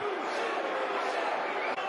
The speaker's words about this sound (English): Once more, 2-0 down. The crowd are not happy, as you can hear.